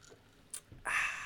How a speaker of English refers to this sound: As I take a sip of my Crown and Coke, pardon moi.